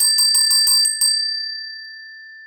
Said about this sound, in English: And I know Amelia has that bell ready to ring.